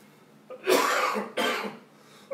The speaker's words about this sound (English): Excuse me. Every time I start preaching, a cough attack wants to come on, and I just rebuke it in Jesus' name. You know, I wasn't coughing all day until I start just minutes before I start preaching.